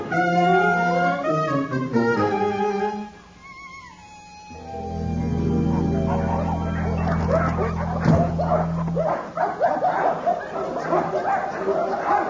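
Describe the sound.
A voice imitates a dog being brought into an office, with a run of high, sliding yips and whimpering barks, loud at first, then a low hum and busy clattering noise underneath.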